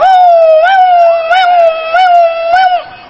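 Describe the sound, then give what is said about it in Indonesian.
A voice imitates the siren of an ambulance taking a patient to the ICU at RSUD Dr. Sutomo in Surabaya, holding one loud, steady wailing tone for about three seconds, with small rhythmic rises in pitch before it fades at the end. “Mbak anggap lambeku ambulan ngono.”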